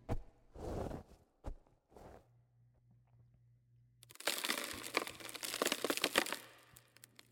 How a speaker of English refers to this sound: Blood ran down his fingers as the sound of falling dirt became distant, replaced by the creaking of the wood making up his coffin.